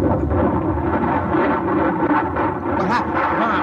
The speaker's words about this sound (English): What is it, Colonel? What happened? The bomb must have blown.